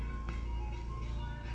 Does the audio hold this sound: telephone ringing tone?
no